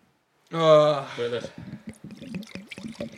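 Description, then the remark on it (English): A voice on the radio imitates wine pouring into a glass, a sustained, gurgling, tonal mouth sound that rises and wobbles, followed by a quicker run of bubbly, glugging vocal noises, fairly loud. “I'll show you how you make a pour on the radio.”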